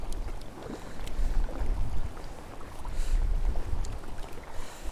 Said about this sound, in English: Aye, the wind's picking up. Wasn't forecast to, but it is.